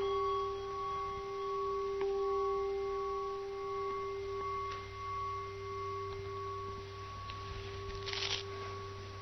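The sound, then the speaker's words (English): A meditation bell struck in a hall rings out with a sustained, shimmering tone of several steady mid-pitched partials that hold for many seconds, with faint rustling toward the end and no talking. “And to help that to be a reality, I'm going to hit the bell.”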